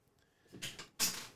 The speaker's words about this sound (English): My chair just broke out of nowhere. I have no idea. I literally just went like that. I wasn't leaning on her anything.